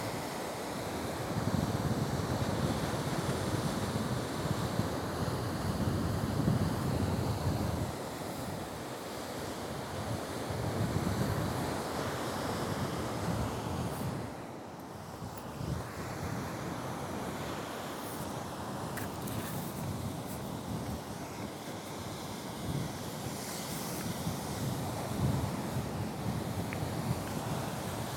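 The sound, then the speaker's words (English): Steady roar of big waves breaking against rocks at a beach, with gusting wind buffeting the microphone, a continuous dense wash with periodic swells and a brief lull midway, no voices. “Probably hear the wind and the waves crashing onto the rocks.”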